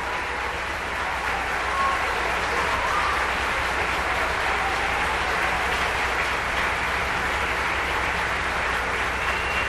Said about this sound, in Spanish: Wow. Démosle otro ronda de aplauso a esta hermana. Hizo compartió muy bien.